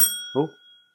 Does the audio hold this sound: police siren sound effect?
no